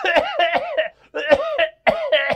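human body sound, cough

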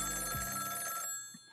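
signal or alarm, telephone ringing

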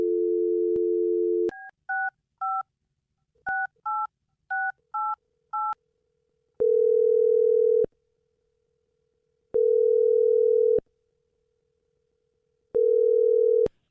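signal or alarm, telephone number being dialed

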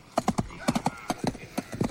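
animal, horses clip-clopping and neighing

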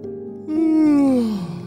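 human body sound, child yawning

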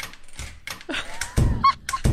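sound effect, door opening

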